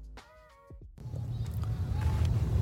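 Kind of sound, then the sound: vehicle, car driving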